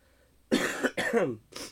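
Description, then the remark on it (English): Three harsh coughs in quick succession from a sick person, the middle one dragging into a rough, throaty clearing sound, with no one speaking. “If you're listening on the radio, you can hear me coughing, and that's good enough.”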